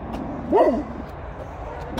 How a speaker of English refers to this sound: Oh, God, it's a pig. It's a barking pig.